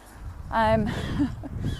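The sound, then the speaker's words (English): A seagull lets out a loud, harsh squawk, followed by a few fainter cries against a low, rumbling outdoor background. “It's a bloody noisy seagull.”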